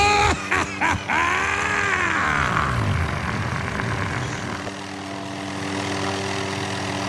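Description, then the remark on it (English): Black helicopters landing on a front lawn: a loud, continuous engine drone with rotor beating, sharp bursts at the start and a whine that swoops down in pitch before the roar settles into a steadier hum. “Oh, geez, oh, they're landing on the front lawn! Black helicopters!”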